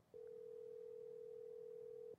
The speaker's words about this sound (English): Yep. It's ringing. It's not too loud, though. But I hear it ringing.